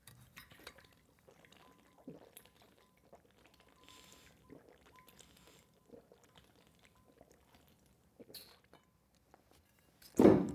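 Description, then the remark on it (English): Quick, quiet gulping and slurping of water as two people race in a drinking contest, one sipping hard through a straw, with small clinks and shuffles, then a louder clunk at the end as a cup is set down. “I could do a drinking contest against you the same. All right, ready? Go.”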